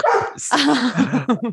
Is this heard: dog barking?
yes